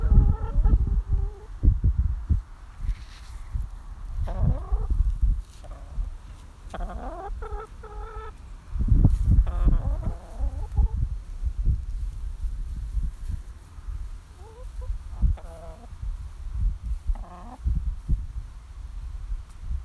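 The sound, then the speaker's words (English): Hens cluck and murmur in a hen garden, a steady scatter of short clucks and a few rising calls over a low rumble of wind or handling noise. “So I'm just going to have a little crouch down in the old hen garden, just to beat one with the hens.”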